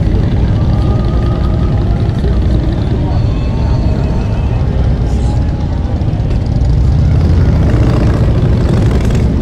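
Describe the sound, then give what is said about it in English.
A steady, loud rumble of motorcycle engines as a motorcycle club rides down Main Street in the evening Christmas parade in Jackson, Ohio, droning continuously throughout, with indistinct voices of a big crowd lining the street mixed faintly underneath. “This is the Apple City Motorcycle Club here in Jackson, Ohio. Their way down Main Street.”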